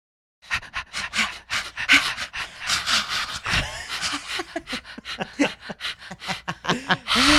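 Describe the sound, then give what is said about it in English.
Voices imitate a dog panting to wrap up a discussion of the cartoon Pound Puppies, with rapid, rhythmic breathy huffs, fairly loud, running steadily for several seconds with a brief laugh-like break near the end. “I feel like we can't go out of this episode without doing some weird panting.”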